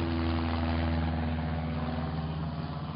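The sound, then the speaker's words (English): A Ford Trimotor airplane approaches, coming down into the field off Boggy Creek, its engines droning in a steady, low, throbbing hum with strong rumbling tones, holding an even loudness throughout with no voices. “Ah, plane approaching.”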